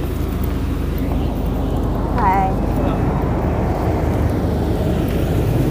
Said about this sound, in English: Now there's a fire engine is here.